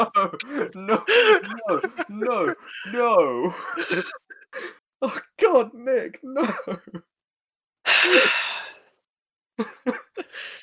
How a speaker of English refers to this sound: Oh, cough.